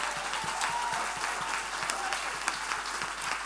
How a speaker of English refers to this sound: You're not clapping at all. If you don't change your clapping, I will not preach.